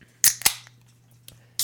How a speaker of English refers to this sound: Oh, yeah, we got to crack beers to this.